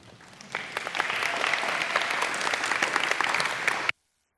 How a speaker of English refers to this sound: Thanks. Y'all can clap again.